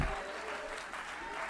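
An audience claps their hands together unto the Lord, a dense, steady wash of many hands applauding at once, fairly loud and continuous throughout.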